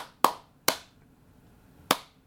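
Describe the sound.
Three sharp hand claps in a syncopated pattern: two close together, then a longer pause before the third, like someone clapping out a hip-hop beat in the style of the claps a producer uses. Fairly loud, with no talking.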